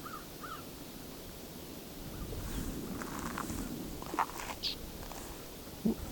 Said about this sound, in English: A crow in the background.